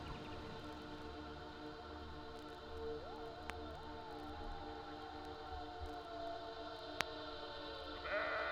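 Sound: sheep bleating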